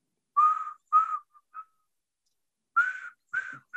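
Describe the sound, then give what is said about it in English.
Someone whistles a short, simple tune, The Farmer in the Dell, in two bursts of quick notes separated by a brief pause, clear, with no talking. “I can't whistle right now, but y'all know the farmer and Dell.”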